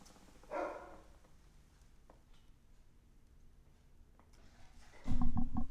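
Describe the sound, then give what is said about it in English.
A dog named Jack, being let back inside, gives a short bark, then after a quiet stretch lets out a louder, longer bark or yelp. There is no talking. “Hold on, I gotta let Jack in. Speaking of dogs.”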